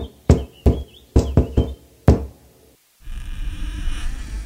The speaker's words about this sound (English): Just knock on the door.